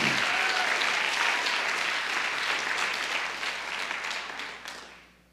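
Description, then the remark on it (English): A large group claps steadily in a dense, sustained burst of applause for the Lord that holds strong for several seconds, then thins and fades out near the end. “Well, give the Lord a hand of applause for that revelation that's going to work in your life.”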